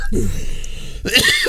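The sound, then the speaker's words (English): A throat clearing, then after a brief pause a harsher, louder cough burst right near the microphone from a person with bronchitis, with no talking. “So if I cough right into the microphone, please don't get mad at me.”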